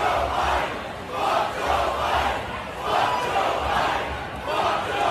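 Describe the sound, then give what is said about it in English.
A large crowd at a musical play chants in unison, its own rendition of the FJB chant against Joe Biden: a loud, steady rhythmic chant with swelling voices repeating roughly every second and a half, over a constant roar of crowd noise. “Don't even know who this is, but here's the crowd from this musical this musical play that was being put on.”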